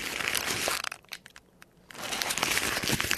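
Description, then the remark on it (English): Continuous paper crinkling and crunching, briefly pausing to a few sparse crackles midway before resuming densely; the rustling is made to imitate a raccoon walking along a fence, with no talking. “That's him walking along the fence.”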